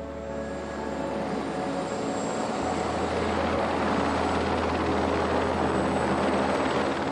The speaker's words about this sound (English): Even in the most remote parts of the earth, there is the sound of machines. This is in the helicopter back in Greenland.